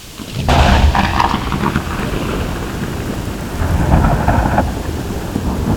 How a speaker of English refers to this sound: See what happens if we make a storm for chipmunks. Pressing up arrow and down arrow to change the speed of the file.